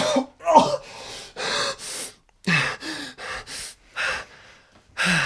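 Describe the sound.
A person imitates a fit of coughing and gasping, a run of roughly ten short, breathy, harsh bursts with brief pauses between them, fairly loud.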